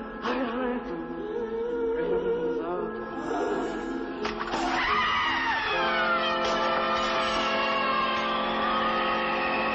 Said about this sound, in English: The ritual causes gusts of wind to tear through the house, all kinds of wild supernatural poltergeist type activity, and then there's suddenly a scream